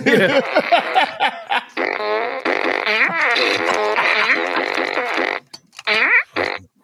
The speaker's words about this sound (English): There's an app called iFart.